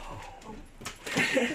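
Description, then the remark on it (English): Puppies whimpering and yipping in short, high-pitched bursts, growing louder toward the end, with no one talking. “Puppies just came in.”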